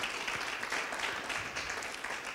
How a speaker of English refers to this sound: So I just want to pause and reflect on that for a second. You can clap for that. Thank you.